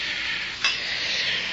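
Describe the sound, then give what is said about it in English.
A drink is poured with a steady, hissing trickle, and a single sharp clink of glass rings out partway through. No one speaks. “You can pour me a drink, too.”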